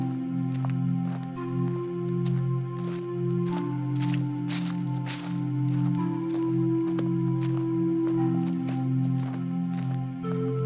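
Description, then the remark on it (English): Crunching footsteps on a dusty mountain path of red dust, climbing higher, land in an uneven walking rhythm, each step a short gritty crackle, over a steady low droning hum that runs the whole time. “You can hear your footsteps as you walk.”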